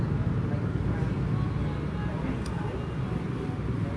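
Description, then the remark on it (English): Steady low rumble of motorbike traffic by a cafe in post-lockdown Vietnam, engines droning continuously at an even loudness with no clear pauses, a faint murmur of indistinct voices mixed into the noise. “And they are not overdubbed sound of motorbikes and me kind of chilling by a cafe, because that is really happening.”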